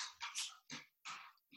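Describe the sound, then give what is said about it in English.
A dog barks four or five times in quick, uneven succession, sounding faint, with no voices over it. “Is that the dog?”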